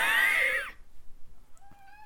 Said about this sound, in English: Oh, my gosh. I have actual cats by me.